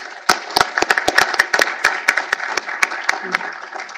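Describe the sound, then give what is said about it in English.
An audience at the Heritage Foundation applauds to welcome a panel, dense overlapping hand claps with a few sharp, louder claps standing out, sustained steadily for several seconds before easing slightly. “So please join me in applause and welcoming our panel”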